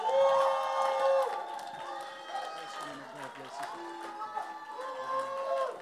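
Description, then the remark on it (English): A crowd at an Every Nation gathering claps and cheers loudly to welcome Dr. David Molapo, sustained whoops and high shouting voices rising over a steady patter of applause that carries through the whole stretch without pause. “Now let's give Jesus a better clap offering than this.”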